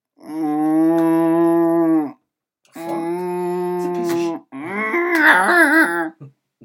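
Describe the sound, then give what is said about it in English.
A person imitates a cow with three long, drawn-out moos, loud, each lasting about two seconds with short pauses between, as if a wee cow were in a milk carton trying to get out; the last one wavers and cracks. “I want you to, whenever I pull the milk wrong, I want you to make a noise like there's a wee cow in it trying to get out, right?”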